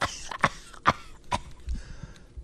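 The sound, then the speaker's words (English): A woman coughs four times in quick succession, sharp dry bursts spaced roughly half a second apart, moderately loud, with no talking. “Remember that talking point about a year ago when everybody was speculating, is she okay? She's coughing.”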